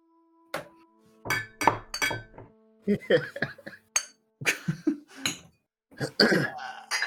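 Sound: glasses clinking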